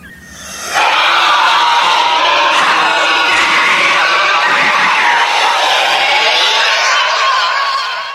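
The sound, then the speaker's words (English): A loud, piercing scream from a movie erupts abruptly and holds for about seven seconds, shrill and strained with a wavering pitch, unbroken before it cuts off. No talking accompanies it. “I'm going to tell you that this scream haunts me, just so you know.”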